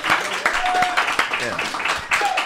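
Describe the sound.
Steady audience applause for a musician who has just sat down, a dense wash of many hands clapping at once, fairly loud throughout, with scattered voices and a few whoops mixed into the crowd noise.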